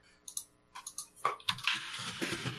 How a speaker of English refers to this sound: Is that a keyboard? Yeah. No way. Yeah, it sounds like it sounds like that. That's awesome. What? I don't know what you're hearing, but it sounds very keyboardy to me.